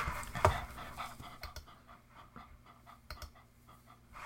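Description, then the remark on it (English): A dog named Puppy pants quickly and steadily, short breathy huffs repeating in an even rhythm, with one louder snort-like burst near the start and no voices. “All right, I think Puppy's excited about this one.”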